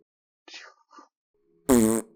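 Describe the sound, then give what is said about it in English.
A loud, buzzy mouth fart blown right into the microphone, lasting about a third of a second, preceded by a couple of faint, brief vocal sounds. “That was me making a fart noise in the mic”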